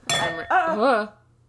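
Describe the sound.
A sharp clink as a water glass bangs into a wine glass, with a brief bright ring, followed immediately by a short voiced exclamation.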